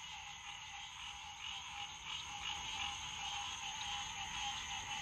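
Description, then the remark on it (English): A dense, continuous chorus of frogs or toads croaking outdoors, a steady high trilling wall of calls that stays loud and unbroken throughout, with no voices. “I don't know if you can hear the Toads / Frogs, but let me be quiet for a second so you can really hear them.”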